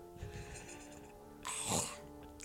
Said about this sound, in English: While we do that, I might munch into this burger.